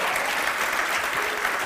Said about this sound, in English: Let's give these two a round of applause. Thank you so much.